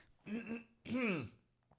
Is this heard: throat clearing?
yes